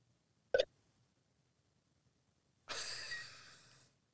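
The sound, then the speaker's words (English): A remote caller's call audio glitching out and freezing: a brief choppy burst of sound, then dead silence for about two seconds before a harsh wash of static-like noise fades in and cuts off. “I kind of something dropped out.”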